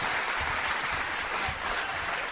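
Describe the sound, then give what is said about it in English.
A crowd at a live venue applauds steadily for the venue staff, dense overlapping claps forming a continuous wash of sound that stays loud and even throughout, with no voices standing out. “And while we're doing that, can we have a big round of applause”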